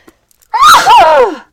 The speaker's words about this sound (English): yeah, I'm going to sneeze probably.